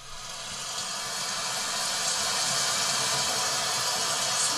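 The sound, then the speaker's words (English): A thunderstorm sleep sound from the sleep sounds section of a sound app plays on its own: a steady, dense hiss of rain with a soft low rumble underneath, fading in over the first second and then holding even. “But if you go into like sleep sounds, for example, I'm going to see if you can hear these. I'm going to try this. Okay. So I might try thunderstorm.”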